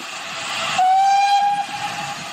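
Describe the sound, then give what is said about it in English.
A heritage steam train of the Keighley and Worth Valley Railway rumbles at Oakworth Station as a sharp, steady whistle blows for under a second over the hiss and clatter of the engine. No one speaks. “We're going to go off and catch the train now.”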